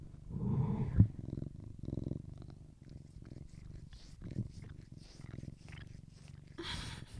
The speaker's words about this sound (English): oh, can you guys hear my cat? He's purring now. Let me see if I can capture this.